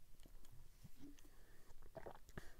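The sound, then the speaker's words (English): Quiet mouth sounds of someone sipping a drink: soft slurps, small wet clicks and a swallow spread over a few seconds, with no talking. “So, take a sip, and we're going to talk about the defense.”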